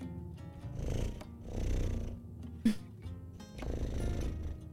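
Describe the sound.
A person imitates a cat's purr with a low, rumbling rhythmic drone that swells and fades in slow breathy cycles, steady throughout, broken once by a brief sharp click.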